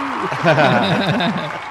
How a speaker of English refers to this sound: Yay! Crowd noise inserted Fox 64. Here in the podcast edit.